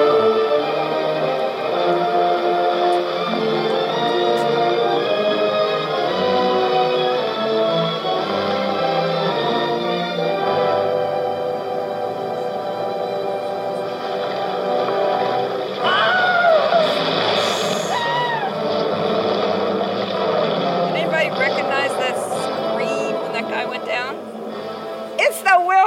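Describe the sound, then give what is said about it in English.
A dense old film soundtrack from the Gary Cooper movie Distant Drums, about the Seminole War, with voices and steady background sound, broken partway through by a sharp, high, wavering stock male scream that rises and falls, then more commotion. “All right, so that scream was, do you know what the first movie it was used in?”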